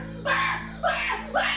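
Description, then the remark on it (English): A person from North Carolina screams three times in quick succession, each cry loud, shrill and harsh, lasting about half a second with only brief gaps between them. “I live in North Carolina, and I'm afraid of my own scream.”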